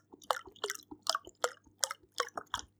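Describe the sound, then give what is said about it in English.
Close-miked, wet sipping and slurping of Camden Hells beer, about seven quick evenly spaced gulps in a steady rhythm, loud and intimate against a faint low hum, with no talking. “Crunching into a mic and then it picking up. Just some ASMR, boys.”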